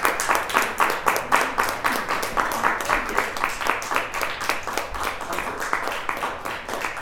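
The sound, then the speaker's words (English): An audience applauds steadily for poet Alan Catlin after a poetry reading, dense overlapping hand claps forming a fairly loud, even wash that holds for several seconds without voices on top. “A big round of applause to Alan Catlin, everybody.”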